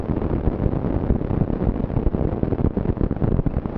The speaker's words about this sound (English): These radio signals, recorded during the Mount Redoubt eruption, let the researchers peek inside a volcano's ash cloud.